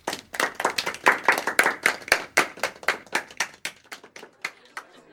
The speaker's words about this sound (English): Thank you all for joining us this evening for our annual Literary Up-and-Comers Cocktail Event. Can we get a round of applause for our very talented honorees?